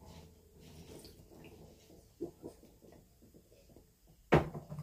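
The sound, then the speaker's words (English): A harmonica is dipped in water: quiet sloshing and small drips for several seconds, then a sudden sharp knock near the end. No one speaks. “Sorry, folks, I had to water my harmonica.”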